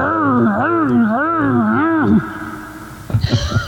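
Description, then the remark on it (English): A person imitates a dinosaur roar with a loud, sustained voiced growl whose pitch wavers up and down for about two seconds, then stops; a short burst of voice follows. “Do the dinosaur roar.”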